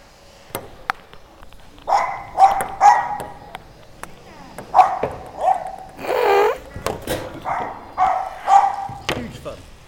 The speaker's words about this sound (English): I'm not sure if you could hear the dogs barking in the edit that's gone out, but there are two dogs, one on a lead and one not on a lead.